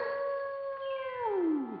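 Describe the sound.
A dog gives one long, loud howl in a song recording, holding a steady pitch before sliding downward at the end. No one speaks, and no barking comes through.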